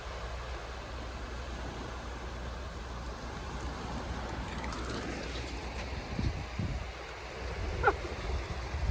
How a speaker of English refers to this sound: Just enjoying the waves on the beach.